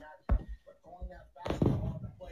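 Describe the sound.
A hammer bangs against a wall: one sharp, loud thud, then a second heavier impact a moment later, with people talking over and between the hits.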